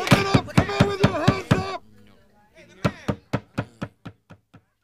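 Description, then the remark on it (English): Someone pounds on a door with a rapid run of heavy thuds, pauses, then hammers again in a second burst that grows gradually fainter, with a voice sounding briefly over the first blows. “There's someone pounding at the door.”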